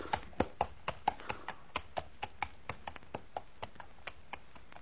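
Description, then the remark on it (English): Horse hooves clip-clop at a steady walking pace, a brisk string of sharp knocks that grows gradually fainter as the horse is led away to the stable. No one speaks. “Shall I take the horse to our stable, sir? Yes, Gertner, and quickly.”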